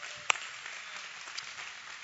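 An audience claps together, a dense, steady patter of many hands with a few sharper individual claps standing out, moderately soft and sustained for about two seconds with no talking.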